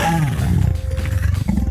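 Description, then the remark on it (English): A tiger roars angrily, a loud, deep growling rumble that holds steady for a couple of seconds with no talking over it. “The tiger was angrier than ever.”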